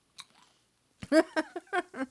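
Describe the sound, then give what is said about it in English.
Crisp crunching of small popcorn being chewed, a quick series of bright bites after a short pause and a faint click at the start, with no talking. “I think it's crunchy though. Yeah, it is crunchy.”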